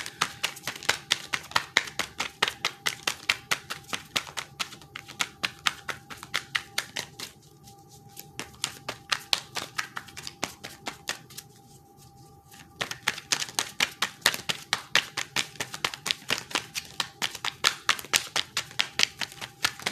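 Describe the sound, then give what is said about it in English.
Steady card shuffling: rapid papery flicks and riffles in continuous bursts, with two brief pauses partway through before the shuffling resumes. No one speaks. “I'm gonna shuffle a little longer.”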